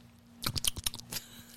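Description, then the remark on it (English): Wet smacking of someone chewing with their mouth open: a quick burst of about eight squelchy bites over less than a second, then quiet, with no talking. “Chew your food with your mouth closed.”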